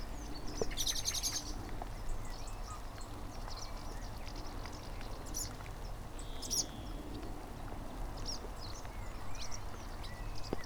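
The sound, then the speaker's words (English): Scattered high, twittering chirps of many swallows calling overhead in a field near Cownhain Lane, coming in short bursts over a steady outdoor rumble and hiss, with no one speaking. “I'm in a field full of swallows.”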